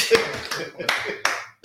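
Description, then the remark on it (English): A clap sound effect: five sharp, bright hand claps in a steady, fairly quick rhythm, each snapping loudly and fading with a short ringing tail before the next. “Hang on, I might have a clap on that.”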